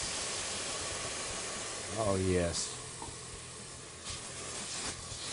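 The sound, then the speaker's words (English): A steady, hissing sizzle of white wine hitting a hot pan to deglaze it runs throughout, with a brief spoken exclamation from a man partway through and a few louder crackling surges near the end. “That means it's time to deglaze. So we're going to hit it with our white wine.”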